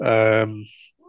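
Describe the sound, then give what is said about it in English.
A single loud meow from a female pet cat, bright and tonal for about half a second before trailing off, followed by a faint, brief higher chirp. “is that a cat? Yeah, it's my cat.”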